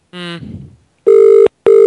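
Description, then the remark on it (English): An outgoing call to Farvinners Limited: the ringback tone sounds as two steady, fairly loud electronic beeps in quick succession, just after a brief voice at the start. “So, while this is ringing, chaps, it's awkward, isn't it?”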